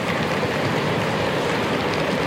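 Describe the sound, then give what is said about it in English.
An audience stomping their feet hard all at once, a dense, steady roar of overlapping thuds with no gaps and no voices, holding at the same loud level throughout. “So what I want you guys to do is to stomp your feet and stomp it really hard.”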